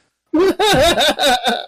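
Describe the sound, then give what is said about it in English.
A rapid string of four or five loud, croaky burps runs together in under two seconds, voiced and gurgling, with no talking around them. “And they were all burping in my ear constantly.”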